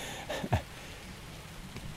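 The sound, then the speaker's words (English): Light rain from a scattered shower starts to patter down in a steady, soft hiss, heard from under trees, with a couple of slightly louder drops or taps near the start and no voices. “These scattered rain showers are going over the country right now.”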